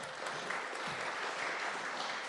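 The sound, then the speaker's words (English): A group applauds steadily, a dense, even wash of many hands clapping at once with no pauses and no voices over it. “Round of applause.”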